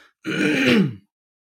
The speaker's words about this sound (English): It's not just an hour of me clearing my throat in your ears. Although, give me one more here.